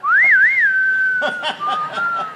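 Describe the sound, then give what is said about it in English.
Someone whistles a short spaghetti-western-style tune, with a wavering rising-and-falling phrase that settles into a long held note, while soft breathy chuckles break in toward the end. “There were only 12 words of dialogue in the whole movie, a lot of whistling.”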